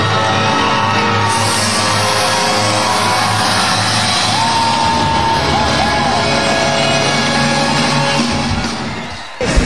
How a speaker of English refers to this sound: And here comes the band! Walking out! As you hear the crowd!